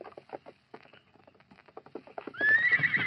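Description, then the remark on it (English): A steady clip-clop of hooves on hard ground as a horse named Scout arrives at a shack in the foothills, then the horse lets out a loud, quavering whinny that carries to the end. “Get off that horse and go inside, Redskin.”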